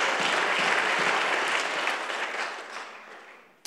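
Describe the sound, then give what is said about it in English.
An audience claps together in a dense, steady burst of applause that gradually thins and fades over a few seconds, with a last couple of claps at the end. “That's a good opportunity for somebody to clap their hands, say amen.”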